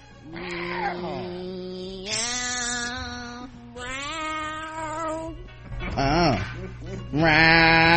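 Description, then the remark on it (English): People voice a string of drawn-out, wavering cat meows, fairly loud, one call after another with some overlapping, in imitation of a cat. “Meow, meow, meow.”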